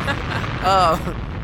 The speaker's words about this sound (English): Where my goddamn explosions at? There it is.